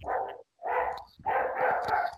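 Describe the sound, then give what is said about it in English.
A dog barks loudly in a few quick bursts, the last one drawn out into a run of overlapping barks, with no talking over it. “somebody's dog's going mad.”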